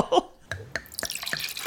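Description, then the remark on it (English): Rubbing alcohol being poured into small glasses for several people, starting as a few separate drips and splashes, then running into a denser, steady trickle. Quiet, with no voices. “I pour everybody a little glass of rubbing alcohol.”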